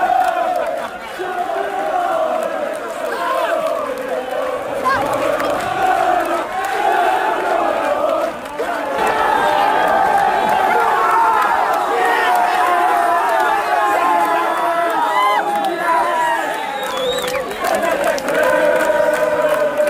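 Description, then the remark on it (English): A large football crowd roars and cheers continuously for twenty seconds at the final whistle as Shells are confirmed League of Ireland First Division champions, a dense wall of shouting voices with whoops and chants rising through it, staying loud throughout. “And here is the moment that the final whistle was blown and Shells were confirmed as League of Ireland First Division champions.”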